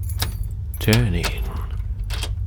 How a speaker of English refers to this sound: A relief that soon melted upon the sound of a key being produced and entering the lock.